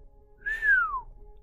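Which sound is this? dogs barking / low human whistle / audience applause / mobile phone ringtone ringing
low human whistle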